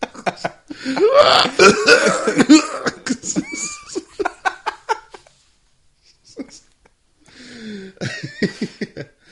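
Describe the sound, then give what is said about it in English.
A cluster of harsh coughs and throat noises from several audience members in the back, mixed with some laughter, followed by a brief lull and a few more scattered coughs. “Can you stop coughing in the back, please?”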